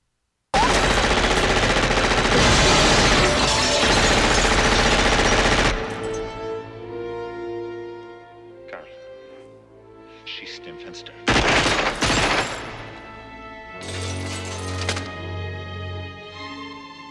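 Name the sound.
gunfire shooting out glass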